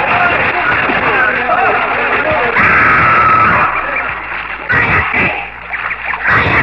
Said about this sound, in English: There was a lake with soft grass at its edges and flowering trees drifting their petals onto the water. We threw ourselves into the lake, shouting and laughing like children.